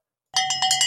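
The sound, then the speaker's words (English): A bright, high metallic bell, rung to get a conversation back on track, rings out in a quick run of four or five rapid strikes after a moment of silence, each hit blending into a sustained shimmering tone, with no voices. “That's the back on track bell.”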